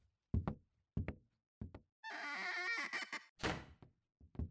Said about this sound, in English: Let me get the door, that being my title and all.